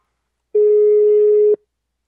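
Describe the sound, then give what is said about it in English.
A single steady electronic ring tone heard through a phone line, a flat hum lasting about a second before cutting off to silence, with no one answering. “I know they hear the phone.”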